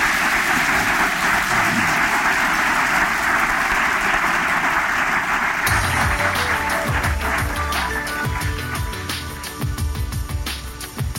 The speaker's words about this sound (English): Please, a round of applause for our guests.